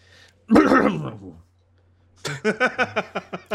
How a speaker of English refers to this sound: So I had to clear my throat. Come on. Can't be dabbing all day and not clear your throat with a mighty harump.